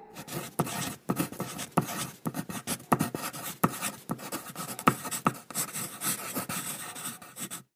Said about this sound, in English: If you said, that is a pencil writing, then you are correct.